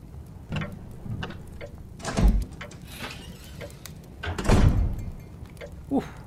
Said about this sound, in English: Ah, fuck, the door swinging shut.